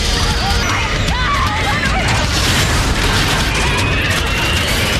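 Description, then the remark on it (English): Aftermath of a plane crash on a beach in the opening of the drama series Lost: a loud, continuous roar of very intense engine noise with a high, rising whine threaded through it, amid scattered crashes and rumbling bursts that never let up. “and then starts hearing the sound that we as an audience member start hearing the sound rush in, which is this high whining, like very, very intense engine noise. And then that's when the whole reveal of the plane crash is there.”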